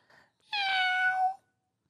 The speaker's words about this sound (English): This cat has more potential than any of us, dude. Meow. This cat has some personality.